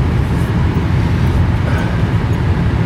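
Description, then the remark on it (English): A giant truck rumbles past outside a shopping mall on a warm day, its heavy, loud low-end engine and road noise filling the air steadily for a few seconds, with no one talking. “As a giant truck goes by us, and well, there's another person coming in this way.”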